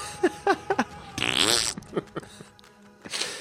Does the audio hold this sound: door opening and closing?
no